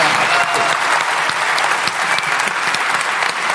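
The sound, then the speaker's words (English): An audience applauds the evening's debate speakers steadily, a dense wash of many hands clapping at a constant loud level throughout, with crisp individual claps popping out of the continuous patter and no voices heard over it. “So I would have a huge round of applause for some really inspiring and very generous speakers.”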